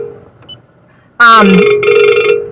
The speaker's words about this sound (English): sorry guys, I'm getting a phone call, just ignore it.